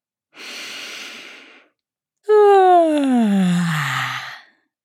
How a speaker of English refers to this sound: Take a big, big breath in through your nose and then sigh it out your mouth. And let's do one more that's noisy, like a big sleepy yawn.